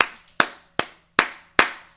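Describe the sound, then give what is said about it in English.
A single person claps their hands about five times in a steady, even rhythm, each sharp crisp smack ringing out briefly before the next, with no voices. “And like I said, the love the city showed for Kobe, man, I got to give y'all a goddamn hand clap.”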